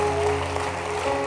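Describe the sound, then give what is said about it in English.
An audience claps together as a clap offering to God, a dense, steady wash of applause with a sustained musical tone ringing underneath the whole time. “Give God one more good clap offering tonight.”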